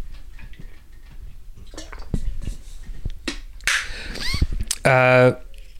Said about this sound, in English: Let's move on after I take a drink of water.